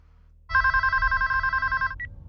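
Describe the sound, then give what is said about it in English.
A telephone rings loudly with a rapid, trilling electronic bell for about a second and a half, followed by a brief short chirp. No voices are heard. “Strange that you and I have never spoken on the phone.”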